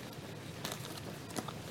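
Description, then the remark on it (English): Quiet, irregular crunching and crinkling as people chew snacks, with a few sharper bites standing out from a soft, steady background hiss. “Sorry, everybody, you're hearing us chewing.”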